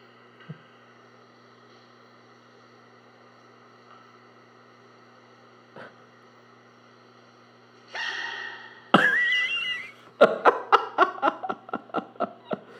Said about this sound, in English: It's only like 7 seconds long or something like that. Sneezing panda. It's so good. It is so good to hear it.